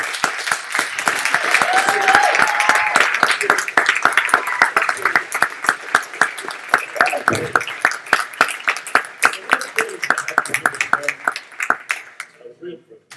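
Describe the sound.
A church audience in Eastbourne stands and applauds steadily for about twelve seconds, a dense patter of many hands clapping that thins into a few sharp, separate claps before fading out; faint voices murmur underneath.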